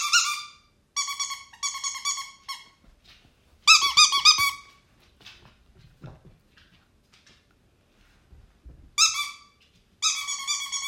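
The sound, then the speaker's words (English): A dog toy squeaker squeaks loudly in quick bursts of high, harmonic squeals, several in a row, then a pause with faint rustling and thumps before more squeaking returns near the end. “So, if your dog is scared of squeak noises, then you probably shouldn't put a squeaker in.”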